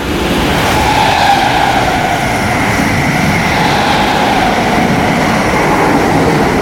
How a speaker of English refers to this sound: The train that we're about to catch into Stratford in time will be a TfL rail now, but it will be a fast one.